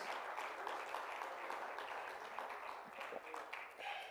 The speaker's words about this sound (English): Oh, let's clap our hands and praise Him together this morning.